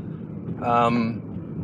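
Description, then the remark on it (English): A car rounds a curve as it nears the driver's house at the end of a long day's drive, its steady low road rumble swelling briefly into a bright, tonal whine for about half a second before settling back to a quieter drone. “this is the sound of me just rounding the curb and getting close to my house.”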